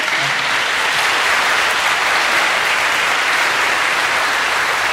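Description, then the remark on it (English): An audience at a church applauds everyone who took part, a steady, dense, even wash of many hands clapping that holds loud and constant for the full five seconds with no voices rising above it. “Can you give everyone here a round of applause?”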